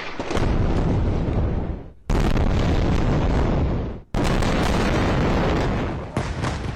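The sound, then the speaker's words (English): Three heavy explosions from Israel's rocket bombardment of Gaza go off in quick succession, each striking suddenly and rolling on in a loud, broad roar for about two seconds before the next blast hits. No voices are heard. “Rockets now raining down on Gaza as Israel unleashes one of its heaviest bombardments ever.”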